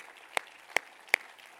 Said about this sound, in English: If you believe that, would you clap your hands today?